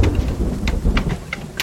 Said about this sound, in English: One day, as it began to hail near Toronto, Marlon Innes saw several Canada geese doing something odd.